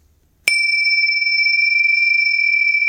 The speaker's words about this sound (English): It's time for the bells.